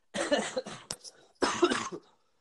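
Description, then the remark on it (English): Two harsh coughs separated by a short pause, with a brief sharp catch in the throat between them and no talking. “People probably have, like, drinking games to the podcast where every time one of us is sick and cough or...”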